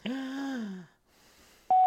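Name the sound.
voicemail beep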